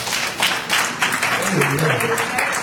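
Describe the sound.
An audience gives a hand clap of praise for the piano player, a dense, steady wash of applause with voices faintly murmuring underneath and a brief vocal tone rising through the middle.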